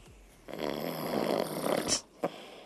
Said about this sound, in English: This is him. This is actually from 10 minutes ago. Listen to this. It's him snoring. Listen.